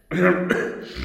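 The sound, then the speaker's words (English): A person coughs once in damp catacombs with white, nitre-covered walls: a rough, voiced hack lasting about a second with a sharp catch in the middle, heard alone with no talking. “How long have you had that cough?”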